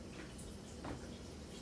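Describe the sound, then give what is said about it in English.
Water runs steadily over a dinner plate as someone washes dishes, a faint, continuous splashing hiss with a slightly louder splash near the middle. No one speaks. “Now move a damn plate. All you did was put some water on it.”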